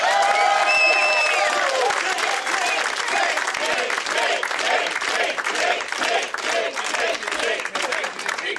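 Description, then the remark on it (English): An audience at the Punchline claps loudly and steadily throughout while voices chant the word "taint" over and over, with a few whoops and cheers rising above the applause at the start. “The chanting, yes, they're yelling taint over and taint, over again.”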